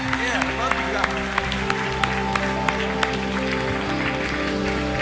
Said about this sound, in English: Come on. Can we give these young people a big round of applause? Can we do that? Let them know you love them.